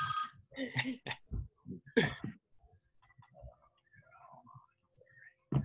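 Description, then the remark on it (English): A phone rings in short, loud electronic bursts near the start, then fades out to quiet background sounds and faint murmuring, with one sharp knock at the end. “Let me just mute all the phones.”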